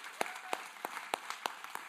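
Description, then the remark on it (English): An audience claps in a steady, fairly even rhythm, with sharp individual claps standing out over a soft wash of scattered applause. No one speaks. “I do want to, let's clap.”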